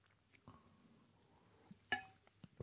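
A quiet sip of coffee from a cup, with soft mouth and swallowing sounds followed by a single bright ceramic clink as the cup is set down, then a few faint taps.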